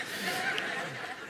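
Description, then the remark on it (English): A crowd of people imitates the hiss of a Coke can opening, producing a sustained, breathy group hiss, with scattered murmuring and a few light chuckles mixed in. “The first sound of my name is like opening a can of Coke. Psh. Now, most of you are making Sprite sound.”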